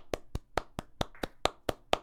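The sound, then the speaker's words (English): A single pair of hands claps nine times in a quick, steady rhythm, celebrating a 3-0 sweep of the Lock of the Week picks. Each clap is crisp and sharp, with no voices in between. “Let's give a little round of applause before we get into this, boys.”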